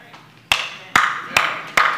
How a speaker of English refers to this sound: I'm going to clap my hands for myself.